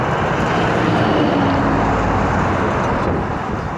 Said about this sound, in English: 880, a 6-to-8-lane highway with heavy truck traffic, most of which runs on diesel.